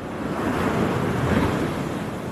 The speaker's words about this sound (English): It is an idyllic seascape. Waves crash out either on vast sandy beaches that run up and down the Galician coastline or rutted into small coves.